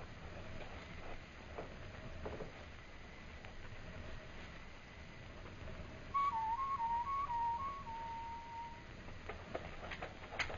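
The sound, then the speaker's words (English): A person whistles a short warbling call imitating a night bird, several quick rising and falling notes, heard clearly over a steady background of wind or ambient noise. No one speaks. “And when you get on the far side, whistle like a night bird.”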